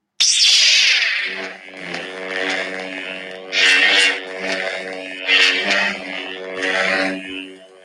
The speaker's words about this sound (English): Would it be lightsabers? It is a lightsaber, yes. Ooh. So the sound effect would be.